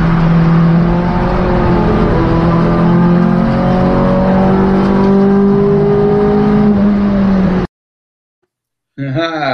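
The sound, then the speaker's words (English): A Peugeot 306 race car engine screams loudly on a circuit, its pitch climbing and dropping through gear changes, then cuts out briefly before roaring back with a rising sweep. “That's the Lionheart car, isn't it? It is. Jonathan Candler there in his 306.”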